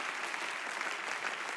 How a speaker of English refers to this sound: Somebody clap your hands and give Jesus praise if you believe that.